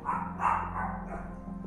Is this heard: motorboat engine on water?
no